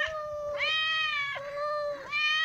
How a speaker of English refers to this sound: Cat number two. And another cat sound.